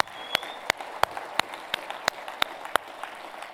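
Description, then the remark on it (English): An audience claps together in a steady, even rhythm, with sharp unison claps about three per second over a continuous wash of scattered applause and crowd noise. “Actually, can we clap for them as they're leaving?”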